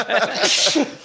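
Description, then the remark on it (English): A big, forceful sneeze bursts out, a loud hissing blast with voiced gasps and throaty sounds just before and after it. “Those are big sneezes.”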